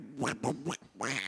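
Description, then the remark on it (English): A man imitates a duck with four quick, nasal quacks in an irregular rhythm, loud, with no other sounds around him. “So he's playing a duck.”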